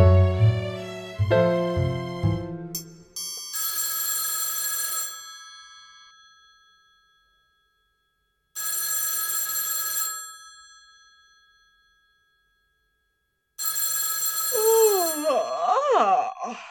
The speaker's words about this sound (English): What time is it? Approximately 2 darn early o'clock. Why is the phone in this room ringing at approximately 2 darn early o'clock?